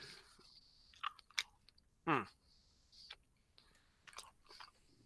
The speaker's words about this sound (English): Give it a good chew. Give it a, you know, let it, you know, put it around the mouth, you know, get the taste buds.